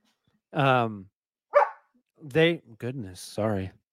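A person mimics a big dog barking, with a drawn-out woof followed by several shorter, sharp yelps in a loose, uneven series, fairly loud.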